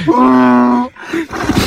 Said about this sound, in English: Listening to the donkey, it does sound like it has coronavirus. It's a dry, yeah. It's a dry heave. We need to get that donkey a mask.